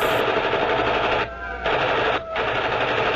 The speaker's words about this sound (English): Sirens. Machine guns.